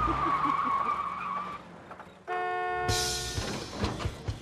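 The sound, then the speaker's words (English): A red Viper sports car's tires squeal in a long, high skid in a TV commercial, followed by a sudden bright honking tone and a burst of rough, noisy engine and road sound. “He trades in his old car for a red Viper.”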